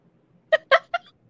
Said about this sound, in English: And look, somebody made music going meow, meow, meow on the track, and it's a hit. It's a hit. That's a hit. That's one of his hits on his album.